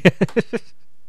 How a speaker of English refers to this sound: Somebody's cat said hi. Yep. Wasn't one of mine.